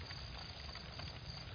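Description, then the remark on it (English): A fire crackling softly, a steady low hiss with faint, scattered pops and snaps at an uneven rhythm. It is quiet throughout, with no voices. “Might hear an owl in the distance. Fire crackling.”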